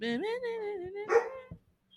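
A puppy lets out a drawn-out, high-pitched whining yelp that rises in pitch, breaks into a sharp bark-like burst near the end, then falls quiet.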